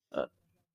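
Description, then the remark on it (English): A single stifled sneeze, muffled by the person covering their entire head, a short burst lasting a fraction of a second that trails off into a faint low rumble. No one speaks. “I tried not to make noise doing that.”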